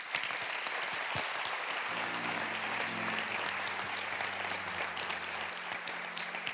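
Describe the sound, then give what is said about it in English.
An audience breaks into sustained, dense applause as a hand clap of praise to the Lord, many hands clapping steadily for several seconds while a low organ-like tone swells and holds underneath. “Give the Lord a hand clap for praise.”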